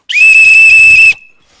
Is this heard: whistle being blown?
yes